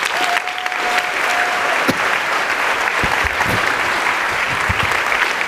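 A crowd breaks into sustained applause, a dense, steady wash of clapping that holds at an even loudness throughout, with a faint high whistle-like tone briefly showing early on.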